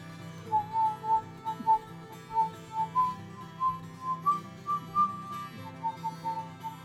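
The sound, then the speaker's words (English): Someone whistles a simple tune of short, evenly spaced notes at a steady pace for several seconds, clear over a low background rumble, with no talking. “And I'm gonna whistle.”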